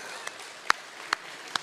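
A handful of sharp, isolated hand claps sound at a slow, uneven pace against a quiet background at a concert, more like scattered sparse applause than a full crowd, with no one speaking.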